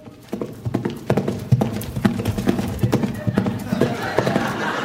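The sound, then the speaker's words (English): Horse hooves clip-clop in a steady rhythm of sharp knocks, with a voice talking over the hoofbeats for most of the stretch. “Hey, look at me! I'm a talking horse!”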